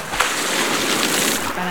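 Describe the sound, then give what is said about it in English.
Water from a kiddie pool fountain splashes and sprays steadily, a continuous hissing, bubbling wash, with faint voices in the background. “This is not an actual bonfire today. It is an actual fountain of water. Yeah, it's a kiddie pool.”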